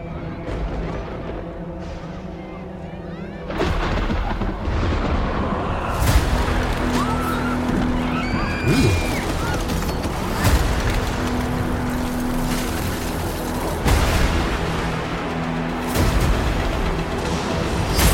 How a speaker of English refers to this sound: Ruh-roh. What is that? So it's a storm?